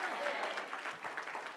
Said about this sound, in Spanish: Dele un aplauso al Cordero. Fuerte el aplauso.